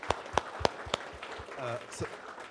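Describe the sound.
Four sharp, evenly spaced claps ring out in a steady rhythm, followed by a brief murmur of voices as the clapping stops.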